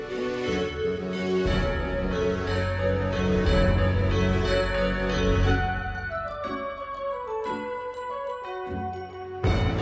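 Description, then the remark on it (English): A bell rings live at Christmas, struck repeatedly, with strikes overlapping into a dense, shimmering wash of lingering overtones. It is loud, continuing for about ten seconds with no voices. “Live, ladies and gentlemen, we are ringing the bell of freedom, the Liberty Bell, if you will, ladies and gentlemen.”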